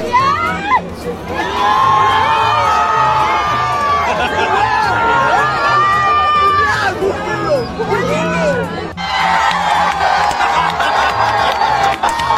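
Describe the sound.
A large crowd at a concert in Mexico City shouts and cheers together in loud, overlapping bursts, many voices calling out the same man's name again and again to help a young woman find her lost boyfriend, amid the dense roar of a packed venue.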